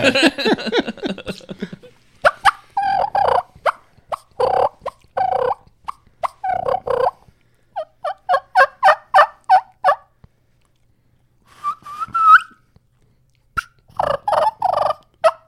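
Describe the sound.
A voice imitates a turkey, with several bursts of rapid, rattling gobbles broken by short pauses and a brief run of higher, whistled kee-kee calls. The calls are loud and alone.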